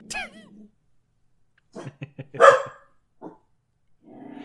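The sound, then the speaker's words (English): A dog, Freyberg, growls at Adam Sandler's face on the TV in short, rumbling pulses, breaking into a sharp bark-like outburst midway, with a brief whine at the start and a voice starting up at the very end. “Freyberg is growling at Adam Sandler's face on the TV.”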